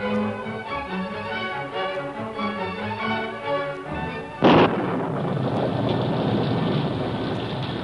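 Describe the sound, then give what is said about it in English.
A sharp, loud thunder crack bursts out midway as lightning splits the night, then settles into a steady roar of heavy rain on a steep mountainside and the valley below, with rumbling storm noise; before it, a layered musical-sounding texture plays with no speech. “Jagged lightning split the night. Rain pelted the steep side of the mountain and the level valley at its base.”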